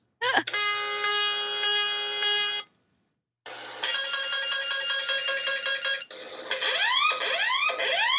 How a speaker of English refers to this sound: Well, you know, I have all these submarine emergency alarms too, which that bugs the crap out of the people at my work because it's like this here.